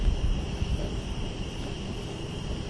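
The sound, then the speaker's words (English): Crickets chirp outside at night in a steady, continuous high-pitched trill over a low, rumbling background hiss. No one speaks. “I wonder if they can hear the crickets on the podcast.”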